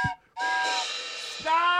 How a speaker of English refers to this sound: Okay, the duck whistle you have to purposely place.